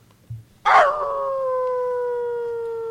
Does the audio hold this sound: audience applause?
no